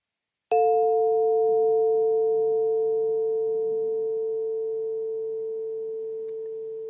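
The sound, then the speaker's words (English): A single chime is struck once during a mindfulness practice, giving a bright metallic attack and then a clear, steady ringing tone that fades very slowly over several seconds, with no voices. This chime is the signal to sit up straight and face front. “Let's begin with two different chimes I will play for you.”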